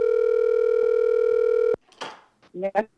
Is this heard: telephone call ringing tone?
yes